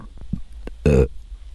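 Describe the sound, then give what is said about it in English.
A single loud burp lasting about a quarter second, rough and throaty, preceded by a few faint soft throat sounds and quiet background hum. “I don't know what I'm burping because oh my God, this is torture this fast.”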